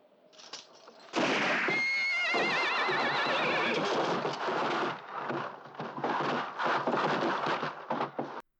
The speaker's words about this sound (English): This is where Django immediately fucks up by somehow knocking over the rifle. The rifle goes off and the horses take the fuck off.